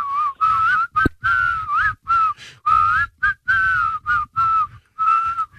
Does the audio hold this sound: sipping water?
no